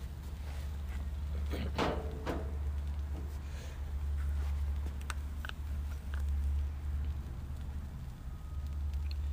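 Shrimp sizzle on a grill with a steady, hissing crackle, scattered sharp pops and clicks, all over a constant low hum.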